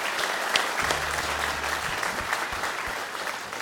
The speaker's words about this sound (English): Listen, why don't you give all those who have been training the youngsters a wee round of applause as well. Thanks so much.